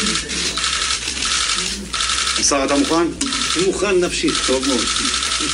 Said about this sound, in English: Yeah, I mean, you can hear the clicking of the cameras there, and that was deliberate because he wanted to make a bit of a media splash, basically to convince everyone to get the vaccine